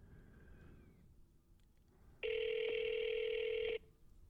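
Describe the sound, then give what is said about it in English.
A single steady ringback tone on an outgoing phone call to Smooth Ambler, area code 304, sounds for about a second and a half, loud as if from a phone speaker, with quiet room noise before it. “It's ringing.”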